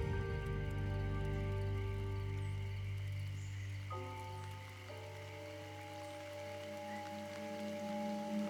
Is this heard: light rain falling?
yes